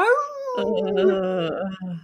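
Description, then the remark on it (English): A man lets out a loud wolf-like howl, one long wavering cry that slides downward in pitch and ends with a short lower note, his voice imitating a wolf. “and he literally howls.”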